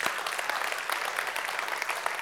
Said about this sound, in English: So I thought, as we start today, why don't we just give a massive round of applause to our Kids Church team.